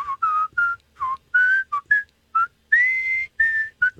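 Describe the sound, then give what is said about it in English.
A person whistles a melody in a series of short and sustained notes that rise and fall, with brief gaps between phrases and a longer held tone near the end. “That's because Don can't whistle.”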